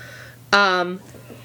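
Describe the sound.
A short voiced yawn breaks in abruptly, a loud, tonal exhale of about half a second that trails off, with quiet room tone before and after.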